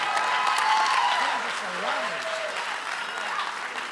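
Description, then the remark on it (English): An audience claps their hands in dense, steady applause that holds at an even loudness, with scattered voices calling out over the clapping, answering the preacher's call for about 100 people to clap their hands. “I need about 100 people to clap your hands and put a smile on your face.”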